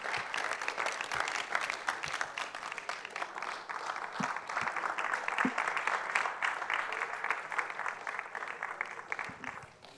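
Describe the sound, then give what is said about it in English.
A crowd claps steadily and loudly for the full ten seconds in appreciation of an hour-long teaching, a dense continuous patter of many hands with no voices rising above it, easing slightly toward the end. “Please, can you help me appreciate that one more time?”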